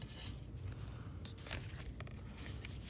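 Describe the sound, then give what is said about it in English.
Steady papery rustling and soft flicking of a deck of oracle cards being shuffled, with brief crisp bursts of riffling scattered through a continuous low scraping texture; no one speaks. “Ugh, I need to stop shuffling because there's just so many good cards.”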